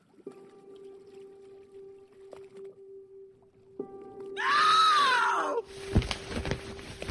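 A single drawn-out human cry in the dark of night swells up and falls away over a steady low hum, followed by scattered sloshing, knocking noises.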